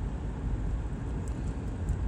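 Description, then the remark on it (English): A steady, low rumbling wash of traffic noise fills the whole stretch, broad and even with no distinct horns or passing vehicles standing out, and no one speaking. “in traffic, kind of.”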